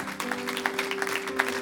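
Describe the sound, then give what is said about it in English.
An audience claps steadily as a clap offering to the Lord, a dense patter of many hands with a few sharper slaps standing out, over a faint steady low hum. No one speaks. “Can you give the Lord a clap offering?”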